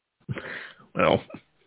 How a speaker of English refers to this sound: tonight I kind of like, you know, felt it like come up a little bit, you know, get a little excited, you start laughing, and that little just that cough just kind of creeps back up on you.